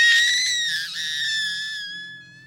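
A woman in the water, with something clutching her leg, lets out one long, shrill scream for help, loud at first, holding a steady high pitch before gradually fading away. No words are spoken.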